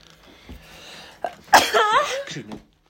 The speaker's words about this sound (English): Excuse me. Bless you.